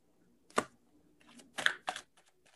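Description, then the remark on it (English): Tarot cards being shuffled during a reading, heard as a few quick papery slaps and a soft rustle between them, fairly quiet, with no one speaking. “I'm going to start shuffling now.”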